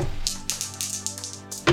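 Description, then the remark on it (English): Dice are rolled for a luck check and clatter across a hard tabletop in a quick run of sharp little clicks that bounce and settle, fairly quiet, with a low steady hum underneath. “Yes, fan roll dice.”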